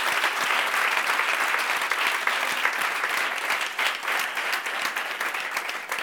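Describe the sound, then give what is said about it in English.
An audience at Epiphany Brooklyn applauds as a hand clap of praise to God for the pastor and the church, a dense, sustained wash of many hands clapping at a steady, fairly loud level for the whole stretch, with no voices standing out above it. “So if your life has been blessed and strengthened because of Epiphany Brooklyn, would you just give God a hand clap of praise for this pastor and for this church?”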